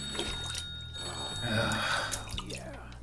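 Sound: telephone ringing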